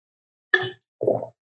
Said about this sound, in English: Quick swig of water, last poem.